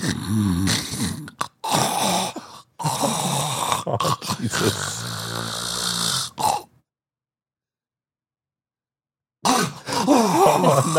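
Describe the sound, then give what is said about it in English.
A voice imitates the loud, ragged snoring of a man with a deviated septum and sleep apnea in several rough bursts with brief breaks, then goes completely silent for nearly three seconds before the snoring abruptly resumes. “snoring is it's the deviated septum plus sleep apnea. And so you can't even get into the rhythm of it because here's how it sounds”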